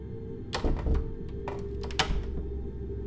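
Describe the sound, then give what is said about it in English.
A front door swings shut: a cluster of knocks and rattles, a short pause, then a sharp metallic latch click, all over a steady low background hum with no voices. “No sooner had the thought crossed her mind, did she hear the sound of the front door swinging shut. A distinctive creak, followed by a metallic click.”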